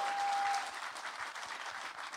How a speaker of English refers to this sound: Round of applause for